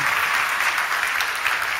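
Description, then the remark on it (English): A crowd at a baptism claps steadily for a person just baptized, a dense wash of many hands applauding together at moderate loudness, with no voices breaking through. “Can we give him a clap?”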